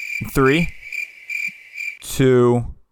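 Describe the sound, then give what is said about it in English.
Crickets chirp in a steady, high-pitched trill that runs continuously throughout, fairly loud, with two brief voiced outbursts breaking in near the start and end. “Here's the crickets.”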